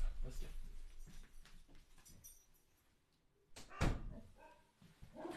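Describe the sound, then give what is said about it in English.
A dog lets out a few sharp, loud barks, with one especially forceful bark standing out, amid thumping household noise like a door or cupboard. “It is Bark O'Clock.”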